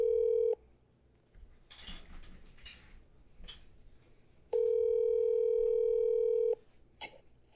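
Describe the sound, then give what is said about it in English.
A loud, steady telephone dial tone sounds briefly, then soft clicks and shuffling noises as a phone call is dialed, then the tone returns for about two seconds before cutting off, with no one speaking. “We want you to be able to hear the phone calls.”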